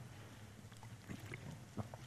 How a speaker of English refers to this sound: And so Paul begins, look at chapter 12, if you turn to Romans, and I'll get a swig of water here.